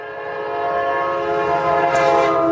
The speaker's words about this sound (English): You know, so hold on, stupid train. My local predicament is I have a noisy train.